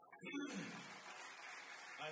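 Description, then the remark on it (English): A crowd at Life Center Church breaks into a round of applause for the church's ministry team, dense steady clapping that swells quickly and holds at a fairly loud level, with a brief voice murmuring under it at the start. “Would you give a round of applause for them?”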